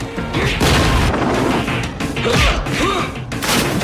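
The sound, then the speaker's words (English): A loud explosion set off by a detonation signal, in the film Knock Off, roars through the whole stretch: a dense rumbling blast with crashing debris and several fresh surges of noise that keep the din going for about four seconds. “Send the detonation signal.”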